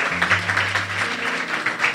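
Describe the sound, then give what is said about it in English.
A crowd claps hands for Jesus in a dense, steady wash of applause, loud, with a low sustained hum running underneath. “Come on, clap your hands for Jesus.”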